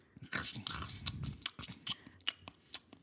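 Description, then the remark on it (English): Wet open-mouthed chewing: a steady run of smacking, clicking bites and soft crunches with short gaps between them, with no talking. “Chewing with your mouth open.”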